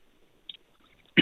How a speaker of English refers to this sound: Sorry, I can't get rid of this freaking cough.